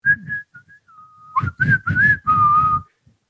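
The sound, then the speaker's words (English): A short whistled jingle from the retailer PC Richard and Sons, played at a stadium: one clear, steady whistle tone that slides up and down over a few seconds, backed by loud bursts of rumbling stadium crowd noise. “So, for example, my number five, the PC Richard and Sons whistle.”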